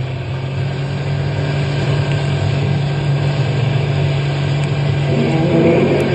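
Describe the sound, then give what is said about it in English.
A car engine roars loudly and steadily, its deep hum building slightly toward the end as the driver steps on the gas to get out of a park. No voices are heard. “Step on the gas. We've got to get out of the park.”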